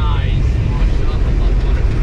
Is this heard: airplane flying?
yes